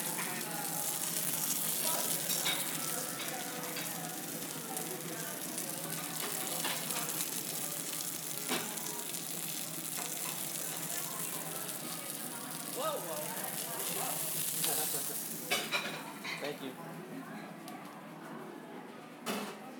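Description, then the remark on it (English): Food sizzles loudly in a hot pan, a dense, steady crackling hiss that runs the whole time with a few sharper pops near the end, while muffled voices murmur in the background. “Is it okay if I come record the sizzle really fast?”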